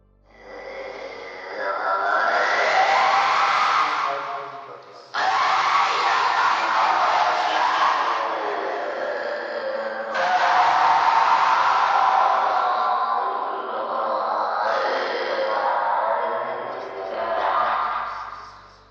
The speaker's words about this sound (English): as together they sit enwrapped in the dim light of his office, while the supposed voices of Satan's minions echo around the room.